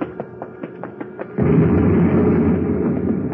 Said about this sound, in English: Oh, just in time. One of the vats blew up.